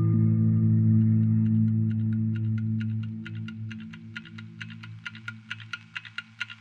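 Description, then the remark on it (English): A clock ticks in a quick, steady rhythm, counting down the seconds, starting faint and growing louder and sharper, over a low droning hum that slowly fades. “But what would a cult be without a loudly ticking clock that counts down the seconds towards the inevitable end of the world as we know it?”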